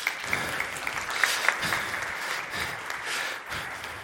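A crowd at a church service applauds with steady, dense clapping that holds at a moderate level for about four seconds, with a few sharper individual claps standing out and no voices heard.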